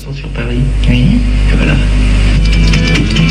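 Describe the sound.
A French pop song plays loudly: a male voice sings a wavering melody in French over a steady, droning low bass and bright instrumental backing.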